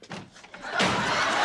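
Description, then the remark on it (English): In a scene from the sitcom Sanford and Son, after a quieter stretch of faint sounds, a door slams shut with one sudden loud bang, followed by a sustained wash of noise that holds steady to the end. “He slams it again.”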